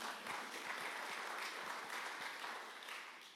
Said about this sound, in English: You can clap for that.